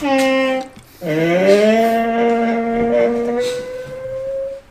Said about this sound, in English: When llamas call to their babies, they hum a tune. But if they're irritated, they might spit. Here's what they sound like.